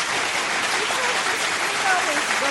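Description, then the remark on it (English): A hand clap applause sound effect: steady applause from many hands clapping, a dense continuous patter that holds at an even level throughout, with faint voices murmuring underneath. “His is a real clap.”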